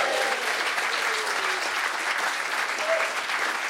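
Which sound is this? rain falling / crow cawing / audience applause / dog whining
audience applause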